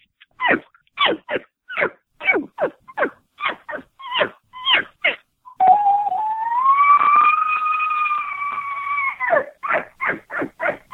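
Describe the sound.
A person imitates an elk call: a run of sharp, rhythmic barking grunts, then a long, high, wavering bugle whistle for several seconds, followed by more quick chuckling grunts. No one speaks.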